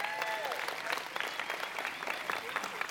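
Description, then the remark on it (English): An audience claps together in steady, dense applause for all the kids, holding for a few seconds, with a few voices and cheers rising faintly through the clapping. “And so y'all give all the kids a good hand clap of praise.”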